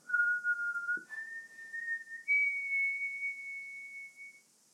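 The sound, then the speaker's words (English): A lone whistled melody of three long, pure sustained notes, each stepping higher in pitch, clear with a small click between the first two; no voices. “He rips their skin off of their bones and puts their bones in his tattered gray bag and then walks away whistling.”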